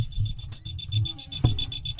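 A rapid, steady run of thin high-pitched electronic beeps, almost cricket-like chirping, coming from underneath a control panel in a studio, repeating evenly over a low room rumble, with one soft thump partway through.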